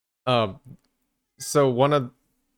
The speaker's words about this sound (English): Sorry, the cat's screaming at me.